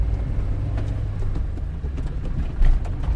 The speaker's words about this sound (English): Nervously, I cross stone bridges labelled weak, rattle across cattle grids, and master the challenge of steep hairpin bends.